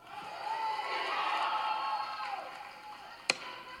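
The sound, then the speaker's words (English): A gallery crowd cheers and yells during the proceedings in a sustained, dense wash of overlapping voices with rising and falling shouts, followed near the end by two sharp, loud bangs. “One more time, and unfortunately, I will not be able to determine who is yelling during the proceedings, so I would have to clear the whole thing out.”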